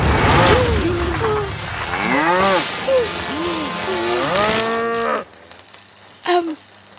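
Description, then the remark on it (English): Several cows moo loudly, their long, wavering calls overlapping for about five seconds before cutting off abruptly, followed by near silence and a brief faint thump. “But Daddy, what about the cows?”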